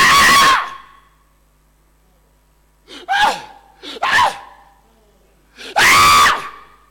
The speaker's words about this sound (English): And as these poor souls cursed and shrieked, they rose and shrieked again and then sank into the water to rise no more. So you hear them shouting and shrieking.